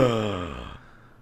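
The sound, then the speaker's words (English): A single loud, voiced gasp from one person, drawn out for under a second before cutting off into quiet. “That gasp was”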